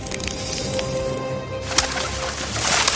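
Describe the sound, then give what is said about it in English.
Birds coo and call together in a palace in a dense, continuous chorus, with overlapping soft warbles and a brief sharper note partway through; no one speaks. “And let the lifeless birds in the palace become alive.”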